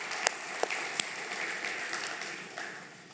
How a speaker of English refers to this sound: So all of our volunteers and staff that work with those events, we thank you so much. Let's thank them all right now with a round of applause. Thank you.